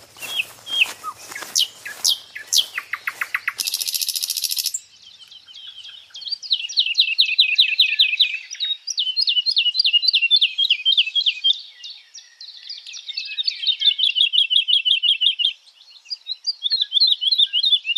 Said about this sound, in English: The birds sing in the canopy above, and I'm starting to learn their calls.